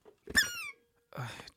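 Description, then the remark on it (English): Two loud squeaks from a vintage object: the first shrill and piercing, sliding downward in pitch, then a pause and a rougher, raspier squeak. No voices. “It makes that really scary, like, squeak.”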